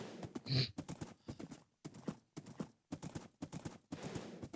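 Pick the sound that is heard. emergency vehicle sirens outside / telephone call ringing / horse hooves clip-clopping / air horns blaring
horse hooves clip-clopping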